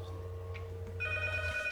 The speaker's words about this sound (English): Then why the fuck is the phone ringing? Maybe it's just someone who called you. We'll just answer. We'll just answer it.